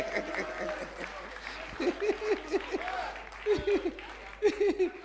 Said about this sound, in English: Hey! Okay, go and see that, clap for them.